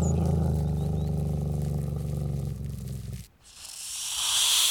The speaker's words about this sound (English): Bobo growled at this snake.